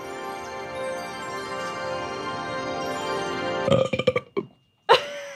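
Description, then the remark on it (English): A long, loud burp, done at the end of reciting a poem, drones steadily for several seconds, then breaks into a rapid series of choppy gulping pulses, falls briefly silent, and ends with one short final belch. “Sorry, I always do a burp at the end of that poem.”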